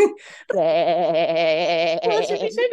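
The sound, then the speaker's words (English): A person imitates a sheep's bleat with a long, wavering, quavering vocal sound lasting about two seconds, fairly loud, after a brief breathy onset. “it's our gay sheep or something.”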